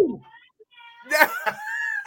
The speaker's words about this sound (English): Cat yelling from the other room.